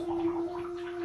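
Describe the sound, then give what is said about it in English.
A fart bubbling up through bath water, a steady gurgling burble lasting about a second, fairly loud with a low droning undertone and no talking. “just farted and a bunch of bubbles came out.”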